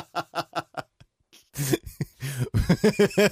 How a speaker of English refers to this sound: I coughed to my elbow.